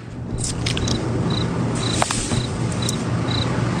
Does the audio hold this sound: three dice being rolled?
no